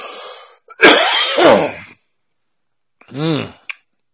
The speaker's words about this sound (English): Trying to move away for the coughing. I know it gets pretty loud and annoying.